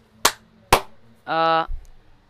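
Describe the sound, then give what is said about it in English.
Two sharp, loud hand claps land about half a second apart, followed by a brief buzzy, steady tone that cuts off abruptly, with no talking. “Did you only hear one clap again?”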